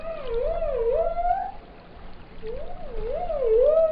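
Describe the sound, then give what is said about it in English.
Dolphin whistles: two bursts of wavering, rising-and-falling tonal squeals with a bright harmonic ring, separated by a short pause, over a steady low rumble of water noise. “And they have this organ that uses pressurized air and they make click noises and whistles that are unique to each species and individuals.”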